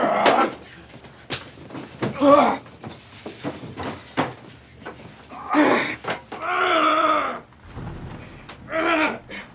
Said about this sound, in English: door.